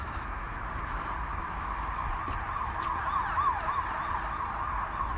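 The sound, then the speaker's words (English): Emergency vehicle sirens wail over a steady rumble of traffic, their rising and falling tones growing a bit louder as they pass. “No, you all hear those sirens. Hopefully everything's okay.”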